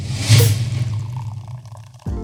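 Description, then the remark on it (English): Cocktails are poured, starting with a brief splashing gush and settling into a steady, gurgling stream for about two seconds before cutting off abruptly. “He poured us three full cocktails that are staples on the PCH menu”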